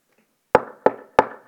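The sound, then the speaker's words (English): Three firm, evenly spaced knocks on a wooden door, fairly loud, each with a short hollow ring. No voices. “A knock on the door.”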